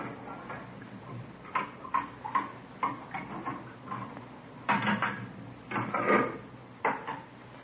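Kitchen clatter of a cook preparing dinner in a colonial mansion: cupboard doors knocking and dishes clinking in an irregular series of moderately loud bumps and taps, with no voices.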